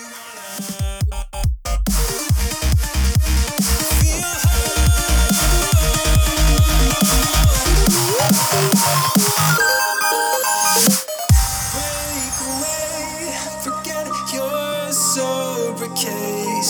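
An electronic outro track plays alone: a punchy, steady kick beat under bright, dense synths, then a brief drop and a sweep into held synth chords with a lighter pulse.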